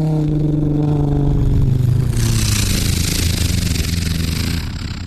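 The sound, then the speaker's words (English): A voice imitates a World War II Hurricane fighter plane passing about 100 meters away: a buzzing, engine-like drone slides downward in pitch, then breaks into a rough, breathy roar that eases off slightly at the end. “That was a hurricane going by about 100 meters away.”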